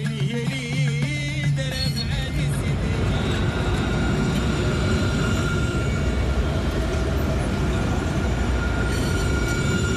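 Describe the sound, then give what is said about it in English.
A tram rolls past in Rabat, Morocco, a steady loud rumble of wheels on rails with high metallic squeals and tonal whines, filling the whole stretch without pause. “Tram goes past me here in Rabat with photos on the side of it of Morocco's World Cup stars in their red and green shirts.”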